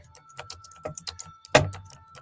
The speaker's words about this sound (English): I'm just typing this for Instagram right now.